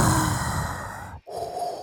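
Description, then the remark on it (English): A person imitates the heavy, mechanical respirator breathing of a villain: a long rasping inhale, a brief silent pause, then a hissing exhale, with no talking. “No, that was in reference to the breathing, not who I want you to introduce us as.”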